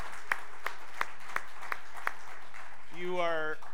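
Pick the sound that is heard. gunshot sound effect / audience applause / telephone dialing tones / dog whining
audience applause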